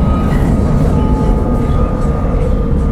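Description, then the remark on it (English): An airplane passing overhead, a loud, steady low roar with a broad rumbling wash and a faint whine on top, sustained without a break for the whole moment. “That airplane had something to say.”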